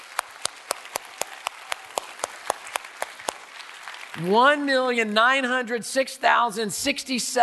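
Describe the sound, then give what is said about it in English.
Steady, sparse clapping with sharp evenly spaced claps, then loud cheering breaks out as a fundraising total is announced, with voices whooping and hollering in rising, wavering pitches. “Can we just give an applause for that? A little cheer.”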